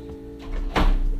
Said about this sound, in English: Be right back. I'm going to close my door. I'm going to come back real quick.